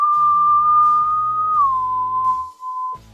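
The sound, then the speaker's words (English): A long, steady whistle holds one pitch, then slides down to a slightly lower note and sustains it before stopping abruptly, with soft instrumental music playing underneath. “And with that, these two spirits jump on up in a lower arch of just that whistle.”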